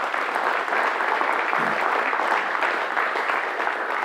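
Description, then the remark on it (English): An audience applauds steadily for several seconds for a woman who has shared her story, a dense, even wash of many hands clapping at moderate loudness with no voices standing out. “As I heard her story, yeah, you can clap for her.”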